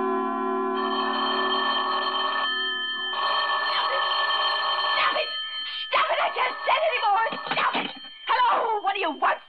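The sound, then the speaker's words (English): A telephone rings loudly in two sustained, buzzing bursts separated by a short pause in the radio play Sorry, Wrong Number, then stops as a person answers in an agitated voice. “Ringing, hello? Will you stop it?”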